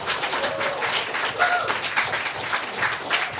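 A steady round of applause from a group, dense overlapping claps sustained for several seconds at moderate loudness, with a few brief whistles or voices faintly mixed in.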